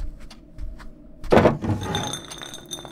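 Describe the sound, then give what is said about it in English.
A desk drawer holding an emergency bottle of vodka is pulled open with a sudden wooden thunk and rattle, followed by faint glassy clinks and shuffling of items inside. No one speaks. “The desk drawer! I keep an emergency bottle of vodka in there.”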